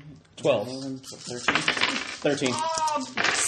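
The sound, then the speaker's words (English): Small hard dice rattle and clack across a table as they are rolled, landing two sixes and a four, with quick bursts of clicking mixed in among voices talking. “I rolled 2 sixes.”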